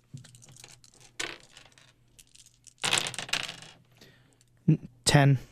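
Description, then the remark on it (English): Small dice clatter and tumble across a hard tabletop in several separate rolls, fairly crisp, with a brief murmur of voices near the end, as players roll for a perception check in a game. “You hear some rustling down there, so I want everyone to hear or to roll a perception check.”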